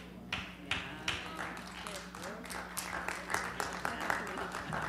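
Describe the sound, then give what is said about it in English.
Thin, scattered applause from a small audience: irregular hand claps that never build into a full ovation, with a low steady hum underneath and a faint murmur of voices. “Let me say it again, and then you clap for real, okay? That patty cake sucked, all right?”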